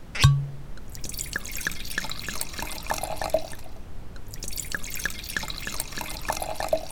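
A drink is poured into a glass, a steady liquid trickle with dripping and splashing, preceded by a single sharp clink at the start. No one speaks.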